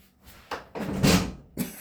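A door bangs and rattles several times in quick, irregular succession, with one longer clattering thud in the middle, loud, no voices.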